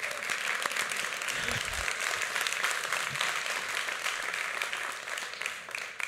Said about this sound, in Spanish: Aplauso de golf.